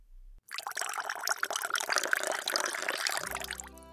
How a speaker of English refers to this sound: Place the salad leaves on a plate and tear apart the cheese over the top. Sprinkle the shallot over the top of that, and then pour the vinaigrette over.